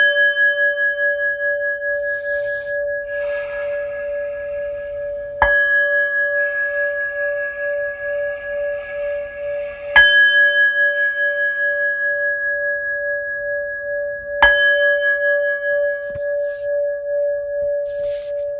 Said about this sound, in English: If I may, I'll get started on the reading today. Before that, I'll bring in the timing bowl.